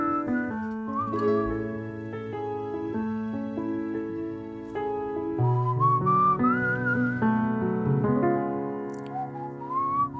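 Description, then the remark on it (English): Someone whistles a sliding, melodic tune over steady musical accompaniment with sustained chords. The whistling is clear and continuous, with no talking. “Always nice to have a bit of whistling.”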